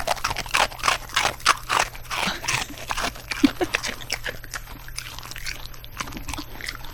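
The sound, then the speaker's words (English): A dog crunches steadily on dry food, with repeated sharp, crackly chewing bursts and a low background hum throughout. “You're welcome for these dog crunches.”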